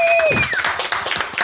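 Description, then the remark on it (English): A falling two-tone whistle slides down at the start, then a live audience at LAL 21 breaks into steady, dense clapping at moderate loudness, with some cheering voices mixed in. “So thank you for the live audience claps there.”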